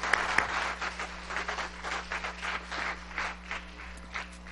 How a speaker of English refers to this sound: Can I get a big amen? Come on, clap for joy, somebody.